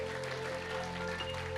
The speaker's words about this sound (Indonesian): Tepuk tangan kita buat Tuhan, katakan haleluya.